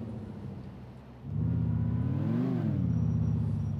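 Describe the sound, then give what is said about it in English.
A video game detective car's engine idles low, then revs up sharply around the middle, its pitch rising and falling back into a steady, loud hum with no talking. “All right, and I can pick any kind of car I want. There you go. I'm going to get the little detective car.”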